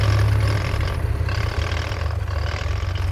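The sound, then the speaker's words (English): A car engine runs steadily, a low rumbling drone with a rough, throbbing texture that holds at a constant level throughout, with no voices. “Get the car”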